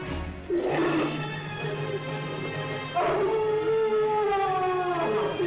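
A werewolf's growling roar: two long, loud, snarling howls, the second stretching out with a wavering pitch, over a low steady hum and no talking.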